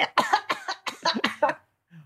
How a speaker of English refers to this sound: Let her clear her throat.